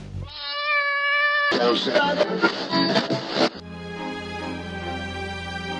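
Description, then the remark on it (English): A cat, Mr. Sniffy, lets out a long, drawn-out meow, followed by a couple of seconds of harsh, noisy yowling and then another sustained, wavering meow, all fairly loud. “we can make sure your precious little ball of fluff comes to no harm.”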